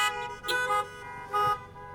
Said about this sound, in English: If they're in the car with you, blow your horn. No, just kidding, don't do that. Okay, go do it.